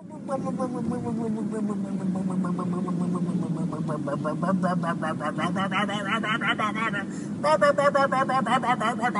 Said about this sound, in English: This episode's audio clip is of a boat being towed down the highway, making a noise. Here we go.